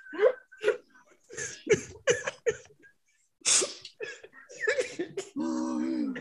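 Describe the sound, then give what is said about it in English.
A sharp sneeze bursts out in the middle, set among short vocal noises and breaths, then a steady humming voice-like tone carries to the end. “I like the sneeze, but anyway.”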